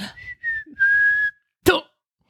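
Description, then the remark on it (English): A thin, high, childlike whistle rises and holds in a few short tones over a low rumbling bed, then cuts off, followed by a sudden sharp thump or impact. “One man remembers hearing the sounds of childlike whistling just before he was thrown to the ground.”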